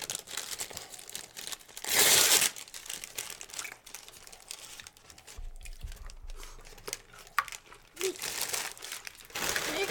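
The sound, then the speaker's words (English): Continuous crinkling and crackling of thin plastic ketchup packets being handled, with a louder rustling burst early on and irregular crunchy bursts throughout, no voices. “Ketchup packets and like put it in the fridge.”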